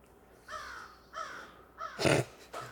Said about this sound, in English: What the fuck was that? Crows up in this motherfucker.